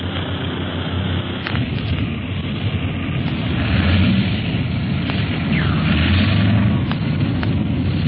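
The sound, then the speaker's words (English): A steady, loud engine roar with heavy low rumble, broken by several sharp thumps and jolts, as a big plane bounces down hard onto the ground in a rough landing in strong wind. “Tough landing, huh, Clint? Yeah. Harder to land this big ship than the old pursuit planes in a wind like this”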